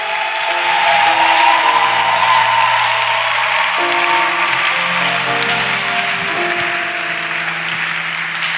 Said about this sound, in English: Put your hands together for the Lord. Give a victory clap, a victory clap.